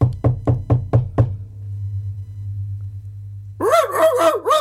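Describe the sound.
A voice imitates knocking on the door of a house with six quick, evenly spaced knocks, then a steady low hum and, after a pause, a loud wavering vocal sound.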